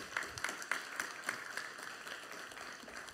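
People applaud two children who have just read a Bible passage, a dense patter of many hands clapping at once with a few sharper claps standing out, steady for a few seconds.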